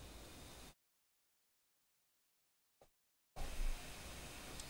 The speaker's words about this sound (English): This damn fan is blowing directly on top of me. So that's why you always hear like a slight hiss. One of these days, I'm going to get up there and close that vent so that way it's not blowing air directly on top of me.